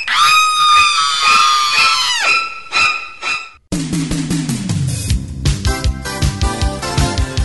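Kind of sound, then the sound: sound effect, terrified scream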